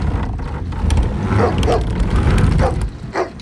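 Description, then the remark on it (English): A dog barks loudly into the pitch darkness during a rainstorm, several sharp barks at uneven intervals over a steady low rumbling background noise, with no one speaking. “began barking loudly into the pitch darkness”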